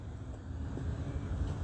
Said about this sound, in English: That's why you have this heavy traffic in the Old Town Historic District, okay?